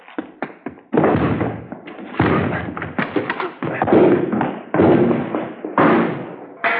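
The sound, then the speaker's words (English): Police officers force a door open with a rapid series of heavy, loud thuds and crashes, a few quick knocks first, then repeated forceful impacts with splintering clatter, no voices. “All right, let's go. Hit the door.”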